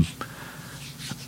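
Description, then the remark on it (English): Paper notes that the speaker keeps referring to in order to stay on track rustle softly, with a couple of brief crinkling bursts against a quiet background and no one talking. “You can hear the paper right there that I keep referring to so I can stay on track.”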